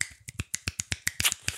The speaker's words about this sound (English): That's me snapping, which is basically like, and rapping. Snap.